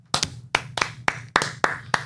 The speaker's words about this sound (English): Yep, and the crowd goes crazy.